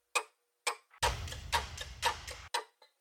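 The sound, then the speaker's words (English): Dry, woody col legno taps on strings, played as a percussion track in a music arrangement, mimic a ticking clock, striking in a steady, even rhythm, with a low rumbling drone briefly underneath the middle stretch. “I'm using me playing Col Legno as the ticking clock sound.”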